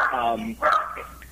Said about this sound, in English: I hear someone cheering for you. Yeah, I apologize to the dog in the background. She doesn't say a word all day up until I'm on one of these things.